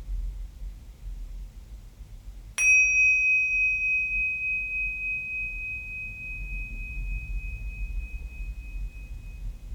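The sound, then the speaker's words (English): A single clear strike of a mindfulness bell, its bright tone ringing out and slowly fading over several seconds against a quiet, low background hum. No one speaks. “And when you hear the bell, put your attention on the bell.”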